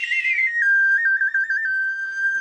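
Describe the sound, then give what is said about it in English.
A person whistles a steady, fairly loud note that slides down at the start, then holds with small wavering trills, with no talking, at Danger Bird Records studio in Silver Lake. “We're actually only doing answers in whistle form only, so you are all set.”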